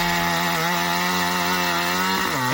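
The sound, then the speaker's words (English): A chainsaw engine runs steadily, a loud buzzing drone that holds its pitch, then dips and climbs again right at the end. No voices. “So, yeah, I mean, like the chainsaw that they gave him was little teeny tiny little kind of wienery thing.”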